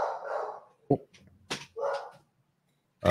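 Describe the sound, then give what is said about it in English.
Several sharp barks from dogs at the front of a house come in an uneven burst, a few short yaps and a longer bark, loud, with a brief pause before one final bark. “So I tried to leave all the windows open, and I have dogs in the front, but I had to just close my window here and close this door, and lovely.”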